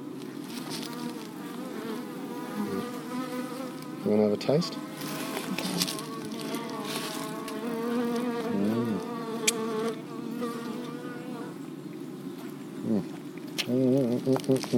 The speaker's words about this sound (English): Look at that, the bees are already onto it.